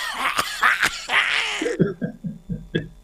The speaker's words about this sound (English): If you don't cough, you don't get off. Nope. That's what they say.